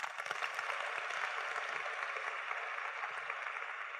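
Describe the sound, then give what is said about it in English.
A crowd claps steadily for several seconds, a dense, even patter of many hands with no voices rising above it. “I think we should clap for them.”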